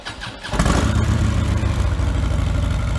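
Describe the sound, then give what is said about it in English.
A stock 2015 Harley-Davidson Street Glide motorcycle, with stock air cleaner, exhaust system, mufflers and motor, fires up after a brief quiet moment and settles into a steady, loping idle, its deep rhythmic rumble fairly loud, with no talking. “The first one here is the 2015 Street Glide. Bone stock air cleaner, exhaust system, mufflers, and motor.”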